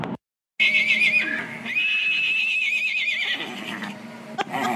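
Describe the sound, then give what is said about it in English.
A miniature horse whinnies loudly, a long, shrill, wavering call that rises and quavers for several seconds after a brief pause, with no talking. “here is a recording of my mini Liam giving Chili a run for his money”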